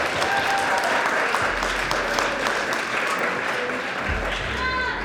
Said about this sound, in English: So first of all, another big round of applause for our keynote speaker,